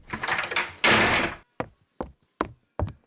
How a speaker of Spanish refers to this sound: Cerré la puerta, fui a mi cuarto.